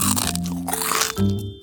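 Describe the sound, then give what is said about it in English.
Someone crunches on a cracker with loud, crackly bites in a steady run, a brief pause, then another burst of crunching over a faint tonal hum. “Let's get cracking on your next favorite snack, crackers.”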